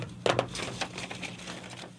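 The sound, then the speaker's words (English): Scissors snip through paper in a few crisp cuts, following a line for a math lesson activity, the first pair sharpest and the rest softer, rustling strokes. “So I'm going to cut here, and I'm going to follow.”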